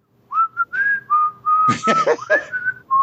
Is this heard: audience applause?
no